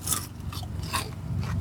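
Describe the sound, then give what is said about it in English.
Crunching onion rings dipped in barbecue sauce: a handful of crisp, uneven crunches from chewing, each a sharp scratchy burst over a low steady rumble, with no talking. “Yeah, but, I mean, it's like barbecue sauce on crunchy stuff.”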